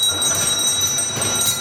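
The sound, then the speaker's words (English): Many small servant call bells for all the rooms of a house jangle together at once in a loud, continuous, overlapping clamour, with no voices over them. “That's all the bells to all the rooms, but that's not possible.”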